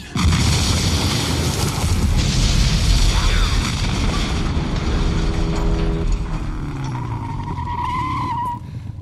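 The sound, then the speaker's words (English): A big cinematic explosion from a film scene with Arnold on a motorcycle and a wheel with fire coming out, roaring loudly, with a deep rumbling boom and crashing debris filling the first six seconds before fading into a thinner, whining screech near the end. “And the big explosion and, like, the wheel with the fire coming out.”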